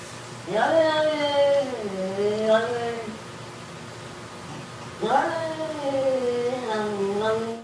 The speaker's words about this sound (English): All right, you get the idea. Yeah. Yep. It's a cat. You know how many people got that right?